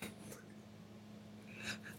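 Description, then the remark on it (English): A short, sharp sneeze bursts out near the end after a faint earlier breathy sound, all over a steady low electrical hum with no talking. “God bless you.”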